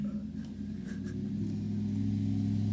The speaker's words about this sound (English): We've got a big old Texas truck outside of the house, and he just got it started. So it's pretty funny, man.